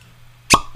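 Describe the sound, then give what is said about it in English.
Whiskey is poured near a microphone into a Norlin glass, splashing in one short, loud plop, followed by a brief bright ring that fades quickly over a faint low hum. No one speaks. “I try to pour near the mic and I'm utilizing my fancy Norlin.”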